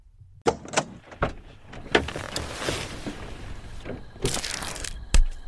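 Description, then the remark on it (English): A car hood is unlatched and popped open after the car has stalled and died, in the middle of nowhere in the pitch dark: a run of sharp mechanical clicks and clunks with rustling between them, ending in a firmer metallic thunk. “Let me just pop the hood and take a look.”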